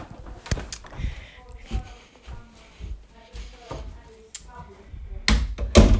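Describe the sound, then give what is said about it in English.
A door is handled and shut, with a few sharp knocks early on and a loud closing thud and rattle at the end, while a voice murmurs faintly in between. “hold on, let me close this door.”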